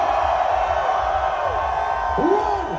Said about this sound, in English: I want to remember this moment by getting a family photo on the count of three. Raise your hands and scream. 1, 2, 3, scream!